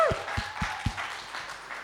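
A short round of applause from a small group: a steady, fairly soft patter of many hands clapping, with a few low thumps near the start, fading slightly toward the end.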